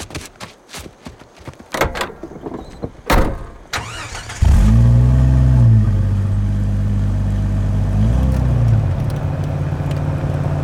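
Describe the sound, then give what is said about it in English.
A few sharp clunks and rattles give way to an open jeep's engine roaring to life, its loud low rumble climbing in pitch twice as it revs and drives off toward a shelter as rain begins to fall. “let's all hop back in my jeep and head towards the shelter before the rain starts”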